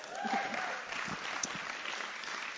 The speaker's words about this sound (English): That's great, girls. Let's give them a clap.